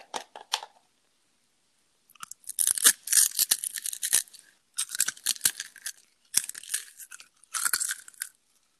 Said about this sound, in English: That's awesome. Who would have thought that eating with your mouth open and smacking and slurping would become profitable for people?